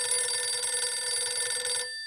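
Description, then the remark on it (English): An old-fashioned telephone bell rings loudly and continuously in a living room with a rapid metallic trill, then cuts off abruptly near the end, leaving a faint ringing tail. “Helen Bintliff was walking into her living room, just in time for the phone call she'd predicted”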